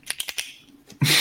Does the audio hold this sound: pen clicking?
yes